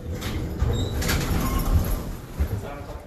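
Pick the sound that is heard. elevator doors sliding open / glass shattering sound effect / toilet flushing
elevator doors sliding open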